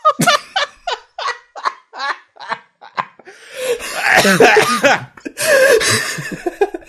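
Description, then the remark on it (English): A coughing fit: a quick series of sharp, choppy bursts gives way to harsh, raspy hacking that runs on for several seconds, loud with no talking. “I need to get some fucking cough syrup.”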